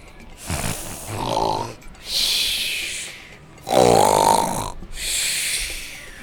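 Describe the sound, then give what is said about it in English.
A voice imitates snoring: two slow cycles, each a rumbling, buzzy inhale followed by a long, airy hissing exhale, fairly loud with no talking. “Now give me an hour to rest.”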